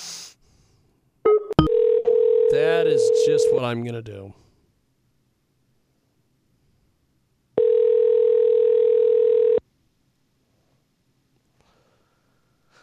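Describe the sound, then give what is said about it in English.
A phone line's ringing tone, from a phone call placed instead of a Skype call, sounds in two long, steady bursts. The first plays under a person talking, and after a few seconds of quiet the second rings out alone, clear. “we're just going to call her on the phone.”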